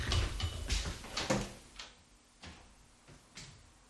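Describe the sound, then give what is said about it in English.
Hammering muffled by a wall: a quick cluster of sharp blows, then slower, evenly spaced knocks that fade a little, heard alone at moderate volume. “Someone's hammering.”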